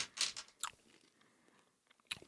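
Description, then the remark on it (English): Crunchy chewing of sour candies, four eaten at once, a few sharp bursts at the start, then quieter mouth sounds and one more crisp crunch near the end, with no one talking. “Let's see how sour these are. I'm doing four.”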